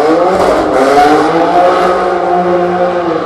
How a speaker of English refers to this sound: So loud. A motorcycle just went by.